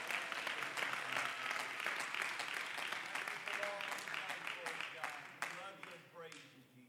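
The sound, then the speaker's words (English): A church audience breaks into sustained applause as a hand clap to the Lord, a dense wash of many hands clapping at once, with scattered voices murmuring underneath and the clapping tapering off toward the end. “Why don't you give a hand clap to the Lord and then you can be seated.”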